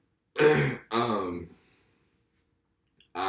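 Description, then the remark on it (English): Someone clears their throat in two quick, rough bursts, followed by a couple of seconds of silence before a voice begins speaking at the very end. “Sorry for clearing my throat like that.”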